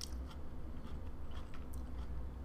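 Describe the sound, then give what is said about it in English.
Someone bites into and chews a spicy tortilla wrap of egg white, fresh jalapeno, scorpion pepper and homemade veggie ground beef, with soft wet mouth sounds and several brief crisp crunches scattered irregularly over a low steady hum, fairly quiet and without talking. “Egg white, fresh jalapeno, scorpion pepper. It's wrapped in a tortilla.”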